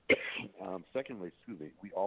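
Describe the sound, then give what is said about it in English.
A sharp throat clearing bursts out at the start, followed by a series of short voiced, hummed throat noises that sound like speech without clear words. “I'm trying to clear my throat.”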